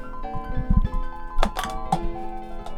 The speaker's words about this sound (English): The one way to end this episode will be to just throw something and run away, I guess. Okay. Got a cup here. I'll hit the door with it.